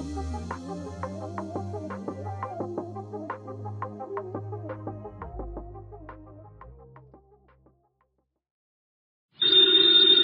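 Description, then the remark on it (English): Music plays and fades to silence, then a loud telephone bell in Nero Wolfe's office suddenly starts ringing right at the end, with no talking over it. “Ladies and gentlemen, the ringing of that phone bell brings you mystery, adventure.”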